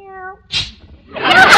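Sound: cat meowing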